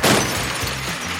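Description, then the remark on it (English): A loud, crunching crash as the Monster Truck 4000 is crushed on the junkyard show Dump Your Junk, a burst of breaking and shattering over a low engine rumble, lasting about a second with no voices. “It's time to crush this monster!”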